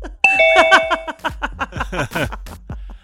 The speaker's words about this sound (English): Oh, gosh, I know that noise. I was waiting for the ding dong. Your conference call is over. Your Zoom call is over. Exactly. Your 40 minutes is up.